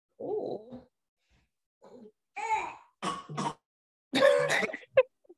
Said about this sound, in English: is he like, is that like a fake cough? No, he's just drinking water. Oh, okay.